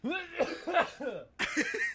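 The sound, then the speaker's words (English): A man coughs several times in quick succession, fairly loud, each cough harsh and voiced, with a short pause before a final cluster of coughs. “He didn't bite into it. He just coughed.”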